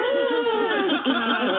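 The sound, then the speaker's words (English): A human voice does a high, wavering whimper like a puppy, with whiny pitch bends sustained loud for the whole moment, with no words. “Let's have a sound for the puppy.”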